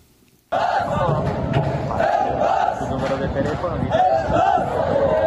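A crowd of some 250 asylum seekers aboard a rescue ship stuck off the Sicilian coast, screaming and shouting for help, many voices overlapping in loud, frantic cries that begin abruptly after a brief silence and continue without pause.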